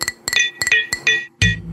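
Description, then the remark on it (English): Kmart champagne glasses clink together several times in quick succession in a New Year toast, each bright tap leaving a short ringing tone; the strikes are fairly loud, the last one landing with a heavier knock. “So, Gina, clink, virtual clink.”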